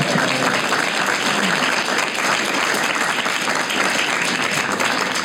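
Sustained applause from a live audience, a dense steady wash of many hands clapping at once, fairly loud, holding at an even level with no talking over it.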